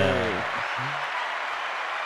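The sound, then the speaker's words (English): A canned applause sound effect plays, a steady wash of crowd clapping at moderate volume, with a voice briefly trailing off at the very start. “Do we have an applause sound effect in there somewhere?”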